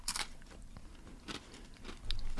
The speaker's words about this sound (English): I love chewing in a mic.